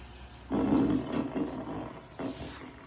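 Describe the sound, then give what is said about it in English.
A long, loud, crackly fart sound effect rumbles close up for over two seconds, sputtering unevenly before a brief dip and a final renewed burst. “That was a long and crispy one.”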